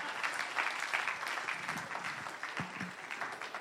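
An audience claps steadily for a few seconds for the speaker as he is introduced, a dense, even wash of many hands with no break, a faint voice or two murmuring underneath.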